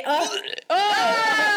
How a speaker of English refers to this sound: There was, like, a burp in there.